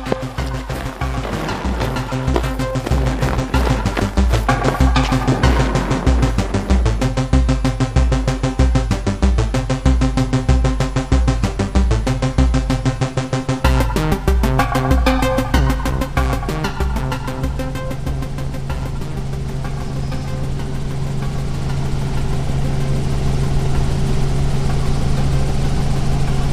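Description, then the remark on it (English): A helicopter's engine and rotor run loudly and steadily, with a rapid rhythmic thumping over a deep drone that later gives way to a smoother, continuous whine. No one speaks. “Well, here we are in the chopper.”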